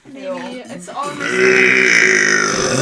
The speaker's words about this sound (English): You got a burp. Oh, okay. We got some more burps.